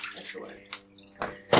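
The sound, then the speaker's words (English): Pre-soak water being poured out of a small film developing tank into a sink, splashing in a few uneven gushes that swell and fade, fairly clear. “Okay, so I'm going to pour out the pre-soak.”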